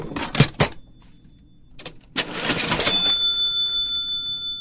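Mechanical clacks of the keys and drawer of an old 1944 cash register in a store, then a bright bell rings out and lingers with a shimmering, fading tone, fairly loud.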